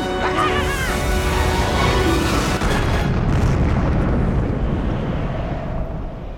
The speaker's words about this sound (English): The distraction allows Steve's energy beam to reach the boy's blue ball, and there's a massive explosion.